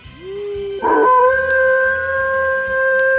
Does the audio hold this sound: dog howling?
yes